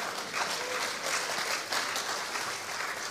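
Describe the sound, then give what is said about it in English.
An audience applauds for Jesus, a steady, dense wash of many hands clapping at an even, sustained level for a few seconds, with no one talking over it. “I think we should give Jesus a clap for all he's done, for his shed blood.”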